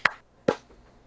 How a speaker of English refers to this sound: Clap sync. 3, 2, 1.